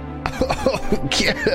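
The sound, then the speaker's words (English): A person coughs repeatedly in a short, harsh fit after smoke is blown in his face, about six rough bursts in quick irregular succession, fairly loud, with a hoarse throat-clearing quality. “He starts coughing and he waves it out of the way.”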